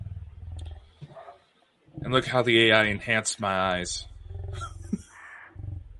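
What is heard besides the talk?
growling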